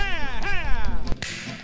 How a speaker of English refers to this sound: A tiny whip.